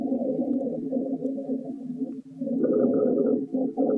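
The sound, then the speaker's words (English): Coarse, continuous low-pitched rhonchi lung sounds, pretty severe, loud and gurgling, with a brief break midway before a rougher, snoring-like stretch; no talking. “Let's try ronchi lung sounds.”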